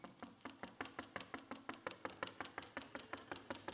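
Rapid, steady knocking on a door, a long run of sharp evenly spaced raps with no pause, fairly quiet and heard alone without any voices.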